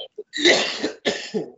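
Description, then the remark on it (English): A rough, raspy cough bursts out, followed by a second harsh hack and some throaty clearing, all within about a second and a half with no talking; a leftover cough after a cold the week before. “And so I got the leftover raggedy cough from talking and stuff, so I apologize for that.”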